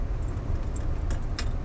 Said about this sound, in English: Idlewild Drive. Big long train running right through the city. Stopping lots of cars, creating lots of traffic.